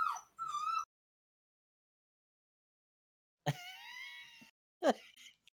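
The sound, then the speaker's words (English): A dog whines in high, wavering cries: a short whimper, a long silence, then a drawn-out, quavering whine followed by a brief yelp, all without any talk. “I cannot believe this dog is whiting again.”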